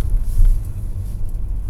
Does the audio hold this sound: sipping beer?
no